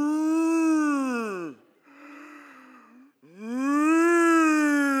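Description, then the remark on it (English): A voice imitates whale calls with two long, loud, moaning tones. The first slides down in pitch and the second sweeps back up, separated by a breathy pause. “When he says, makes intercession with groanings which cannot be uttered, you know, groanings are not like whale sounds.”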